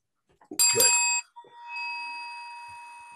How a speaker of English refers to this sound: And when you hear the bell, let's come out swinging.